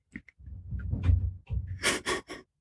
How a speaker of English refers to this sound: If you can hear that, which I can hear that, so they could probably hear that, that is her cat. My cat thinks he's a zombie.